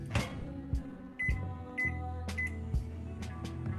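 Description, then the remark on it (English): A microwave oven heats coffee mixed with room-temperature water in a mason jar for about 10 seconds: a few short electronic beeps and clunky knocks over a low, steady mechanical hum, with no one talking. “The following steps are very much optional, but what I sometimes like to do is add room temperature water to the coffee itself, and then I microwave it for about 10 seconds or so.”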